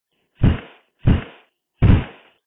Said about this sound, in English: And then came the trash can sound.